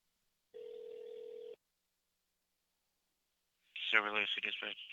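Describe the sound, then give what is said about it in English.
A single ringback tone on a phone line, a steady electronic buzz lasting about a second, followed by a pause of silence before a man starts speaking. “Done with this phone call? All right. Oh, wait. It's ringing now.”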